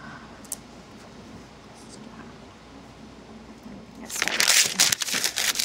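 After a few seconds of quiet room tone, paper is crumpled up: a loud, crackly burst of crinkling that runs on through the last second and a half.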